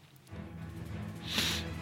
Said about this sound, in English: I know, I keep sniffing. I'm sorry. Allergies are still bad.